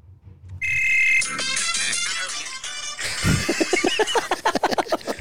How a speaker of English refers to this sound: That's because someone's calling. That's his ringtone.